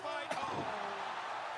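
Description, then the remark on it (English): A single sharp, loud slap of a wrestler slapping his own leg cracks out near the start, standing clearly above a steady wash of background crowd noise that continues throughout. “He leg slapped.”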